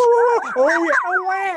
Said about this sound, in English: Get the sound, but we need dog sounds.